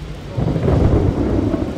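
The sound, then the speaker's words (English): A heavy downpour roars steadily while low, rumbling thunder swells beneath it, loud, with no voices, just the dense wash of a storm that brings tornado warnings one county over. “And it is the wrong kind of rain. The kind that includes tornado warnings one county over.”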